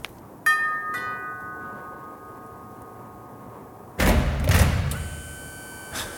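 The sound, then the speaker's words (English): Two ringing doorbell chimes fade slowly, then after a pause an automatic front door of a stone house swings open with a loud mechanical whoosh and rumble, followed by a steady hum and a soft thump at the end. “Oh, that's charming. Automatic door, huh?”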